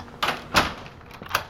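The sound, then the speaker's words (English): A door thuds shut, followed by a few sharp clicks and clunks like a latch or lock being turned, with no one talking. “And lock the door behind us.”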